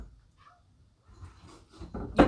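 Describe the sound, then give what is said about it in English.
A door creaks and swings as a cat runs out through it after a dog, ending in a short knock as it bumps open, after a stretch of faint low rumbling and soft shuffling movement. “Did you hear that? She ran out the door, running after the dog to hiss at her.”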